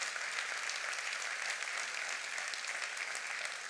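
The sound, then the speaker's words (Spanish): An audience claps steadily for those who brought guests, a dense, even wash of many hands that stays at the same moderate loudness throughout, with no voices rising above it. “Muy bien, ¿por qué no le dan un aplauso?”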